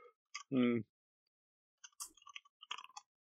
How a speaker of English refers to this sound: I can try again in 1d5 weeks. Let me roll the dice.